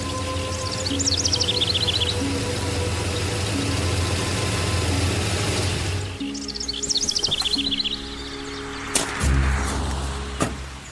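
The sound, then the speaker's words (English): A heavy tow truck engine rumbles loudly as it arrives, then settles into a steady idle, with birds chirping in the background and a few clunks toward the end. “There'll be a tow truck any time now.”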